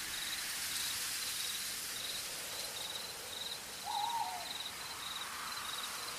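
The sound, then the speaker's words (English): Steady, soft hiss of rain falling through a forest, with a continuous high insect chirr and a single short owl-like hoot partway through. No voices. “Maybe a little bit of another classic you might have forgotten about, such as Rain in the Forest.”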